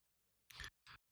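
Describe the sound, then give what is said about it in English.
Headphones dropping onto a hard surface with a quick clatter, two loud knocks about a quarter second apart, with almost silence around them and no talking. “I heard paper rumbling and... My headphones fell.”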